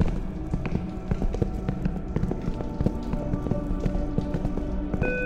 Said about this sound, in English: Sounds like an intercom system turning on.